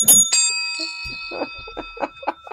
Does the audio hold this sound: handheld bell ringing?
yes